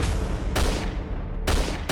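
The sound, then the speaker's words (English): Five sharp gunshots ring out in quick, uneven succession, loud, each bang trailing into a noisy rumbling decay that fills the gaps between shots. No voices are heard. “As we're running, I heard 5 gunshots.”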